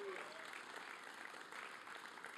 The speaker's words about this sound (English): Come on, give God a hand clap for that. Amen.